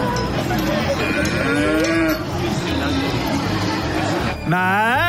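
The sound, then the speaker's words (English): Several cows, one of them Australian, moo in drawn-out, overlapping calls, with a loud, rising low bellow near the end, all over a steady backdrop of farmyard noise. “Because Australian was moo.”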